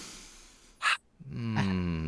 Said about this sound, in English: Take a deep breath in. Yeah, everybody at once.